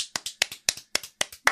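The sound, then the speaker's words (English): A single person claps their hands about a dozen times as a round of applause, in a quick, slightly uneven rhythm, each clap sharp but fairly quiet, with no voices. “can we round of applause for the listeners for getting through? Big round of applause.”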